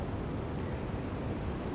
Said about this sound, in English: And then as you watch the ocean, pay attention to the waves. Pay attention to the sounds of the waves. Imagine the sounds of the waves. And it's very quieting.